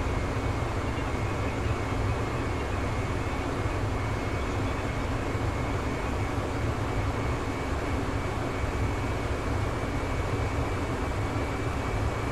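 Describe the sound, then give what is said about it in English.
A steady, loud airplane engine drone from a flight simulator fills the whole recording, an unbroken roar with a faint high whine riding on top and no voices. “I just wish I could get my engine to, like, quit being so high, because I don't think, even in a real plane, I wouldn't hear that.”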